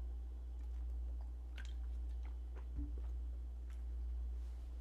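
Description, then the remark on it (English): Wet mouth sounds of someone sipping and swallowing water to ease a dry mouth, a few small clicks and gulps over a low steady hum, with no talking. “And I think the noises I made were even grosser while I was swallowing it.”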